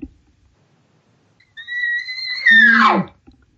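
A bull elk about 175 yards away bugles once: a long, high, slightly rising whistle lasting about a second, then breaking into a harsher, descending scream with a deep grunting undertone before cutting off.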